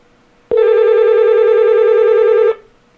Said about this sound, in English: We are going to see if we can get Tom on here. We'll just change topics in midstream. We'll see if Tom will pick up the phone.